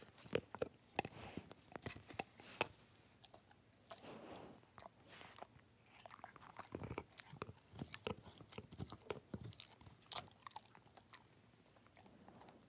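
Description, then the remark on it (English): A dog gnaws on a solid, chewable plastic cheese chew toy, making irregular clicking, squeaky crunches and gummy scraping sounds that continue unevenly throughout, with no one talking. “Gonna record Buddy chewing his cheese toy.”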